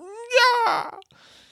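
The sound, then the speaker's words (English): A drawn-out yawn: a voiced, slightly whiny tone that swells and then breaks into a breathy, airy sigh, followed by a soft exhale. It lasts about a second. “Oh no, here comes a yawn.”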